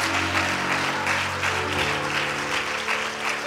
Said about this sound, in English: Come on, clap your hands like you really mean it.